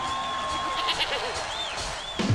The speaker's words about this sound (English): But you should make fun of him with the goat noise.